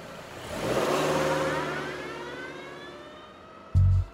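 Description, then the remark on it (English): A car engine revs and accelerates as a woman drives away, swelling loud at first and then fading steadily, ending with a short low thud. “She grabbed the woman's lungs and placed them into it, then tossed the bucket into the car and drove away.”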